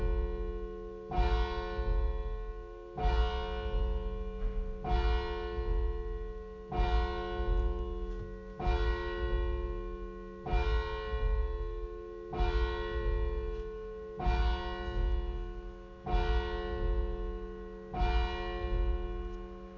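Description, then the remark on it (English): A church bell tolls about ten times at a slow, steady pace, each deep ringing stroke overlapping the lingering hum of the last, with no talking. “Bell's now 11 minutes off.”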